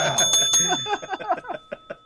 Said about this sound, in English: you look away and ring the bell. You can't do both.